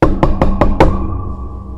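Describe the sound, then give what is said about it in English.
Five quick, firm knocks on a door in an even rhythm, loud, followed by a short hollow ring-out. No voices. Bradenton Police knocking on the door of a 70-year-old woman's home. “She get a knock on the door.”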